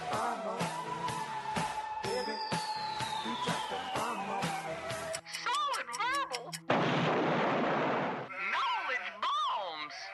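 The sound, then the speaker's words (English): A rapid barrage of loud blasts and booms with a falling whistle, then wavering sheep bleats, a burst of rushing noise, and more bleating at the end. “Because they are who is going, the sheep will be left after the explosions.”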